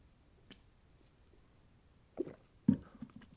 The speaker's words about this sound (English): And I need another sip of coffee before I tell you about it.